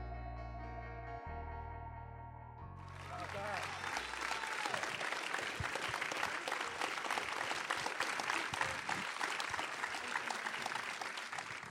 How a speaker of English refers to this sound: And that applause is so well-deserved.